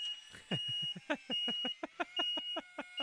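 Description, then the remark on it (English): A reversing vehicle's backup beeper sounds loud, a rapid run of sharp electronic beeps over a steady high-pitched tone, continuing without pause and with no voices. “Back up the scissor lift. Back up the Brinks truck.”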